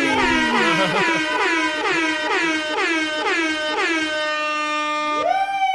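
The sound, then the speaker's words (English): A loud DJ air horn fires a rapid series of about eight blaring blasts, then ends on one long rising honk, with no voices over it. “Oi, oi, oi, oi, oi, oi, DJ, DJ, DJ, DJ, give us some fucking air horns.”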